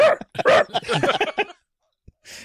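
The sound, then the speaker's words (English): A voice imitates a dog barking in a quick, loud run of yappy barks. After a brief pause there is a soft click and a short breathy sound. “They never put that dog on the road. They should have.”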